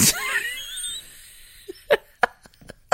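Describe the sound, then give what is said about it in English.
A man with a cold sneezes and coughs somewhere downstairs, a sharp burst at the start followed by several short, muffled bursts spaced unevenly through the quiet that follows. “can you hear him sneezing downstairs? That's …. He's got a cold. He's sneezing and coughing away.”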